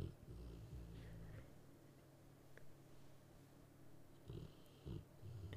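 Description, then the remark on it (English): A sleeping female dog snores softly, low rumbling breaths coming in a couple of slow bursts with quiet pauses between them. “Yeah, it's picking her snore up a little bit.”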